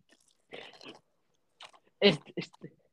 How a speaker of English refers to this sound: What is that? Are you slurping on what I think it is?